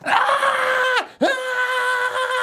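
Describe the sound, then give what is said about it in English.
A voice imitates a newborn baby's hungry screaming: two loud, sustained wailing cries with a brief gasping break between them, harsh. “They scream their head off.”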